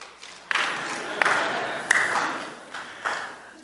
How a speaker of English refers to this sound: What I'm going to do is say, 1, 2, 3, go, and then all of you at the same time will clap, just like that, okay?